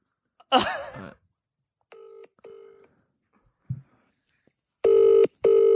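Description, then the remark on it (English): A short burst of voice, then two brief dialing tones and a low thump, followed by two loud, steady telephone ringback tones separated by a short gap. “I'd be surprised if he answers. Imagine. Can you see what his voicemail is?”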